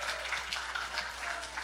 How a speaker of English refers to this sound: Can we get another round of applause for those kids?